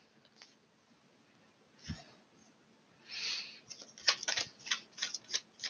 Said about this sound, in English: I'm going to shuffle a few more cards.